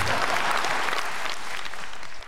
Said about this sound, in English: Now, if that gets the biggest cheer of the night, I'm going to be really pissed off.